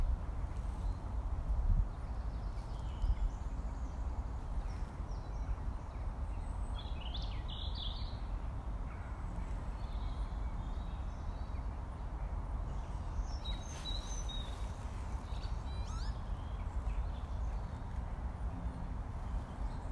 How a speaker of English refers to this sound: It's good to hear the bird song. Various calls and cries.